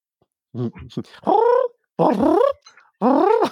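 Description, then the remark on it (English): A person imitates a cat with three drawn-out, whiny meows, loud, each rising then falling in pitch, preceded by a few short vocal grunts and separated by brief pauses. “Meow. Oh, damn it. I forgot there was a cat”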